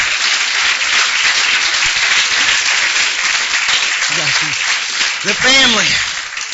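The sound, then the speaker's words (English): A crowd claps hands in Jesus' name, steadily, a dense, loud wash of applause filling the whole clip, with voices calling out and a rising shout near the end. “Would you clap your hands in Jesus' name?”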